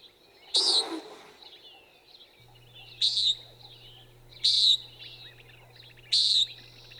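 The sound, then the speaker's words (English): A common nighthawk's deep, rushing wing boom, made by air rushing through its primary feathers as it dives, bursts out once near the start, followed by three evenly spaced, nasal buzzy calls against a quiet background with a faint steady hum. “And that's a mechanical sound produced as the bird goes into a dive. Air rushes through the primary feathers, and as it comes out of the dive, the rushing of air ceases and the boom suddenly stops.”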